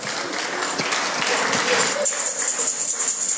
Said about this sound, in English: Pastor Femi has won the conversation. Help me clap for him. He has won the conversation.